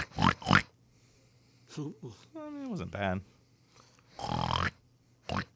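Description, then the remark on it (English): A voice imitates a pig with a few snorting grunts and a squealing oink, delivered in short bursts, with brief talking in between. “That sounded pretty good. Sounded like a pretty good pig, right?”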